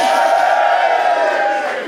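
A loud, sustained burst of audience cheering, many voices whooping and shouting together at a steady level before easing slightly at the end.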